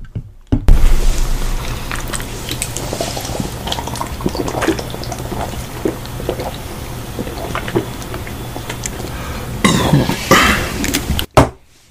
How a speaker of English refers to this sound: And that is how you end a podcast with a nice beer big... Big beer chug. Now, you probably not, you didn't hear much there, but we all just pounded a beer